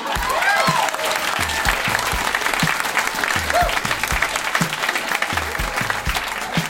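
An audience claps steadily and loudly, a dense wash of applause that carries on through the whole stretch without letting up.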